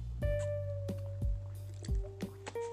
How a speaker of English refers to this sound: Let me get a sip of my water.